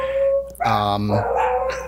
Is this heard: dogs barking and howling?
yes